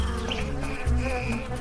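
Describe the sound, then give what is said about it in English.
A steady buzzing of the first bees, pollinating insects among the first flowers of the Cretaceous, with a droning hum that wavers in pitch, continuous throughout with no talking. “And with those first flowers came pollinating insects like the first bees. I can hear them buzzing.”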